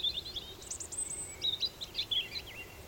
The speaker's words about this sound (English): Here's an example from Alexandra Daisy Ginsberg, who worked with the Aurelia Sound Studio. Before sunrise, a lone bird begins his solo with a warbling call.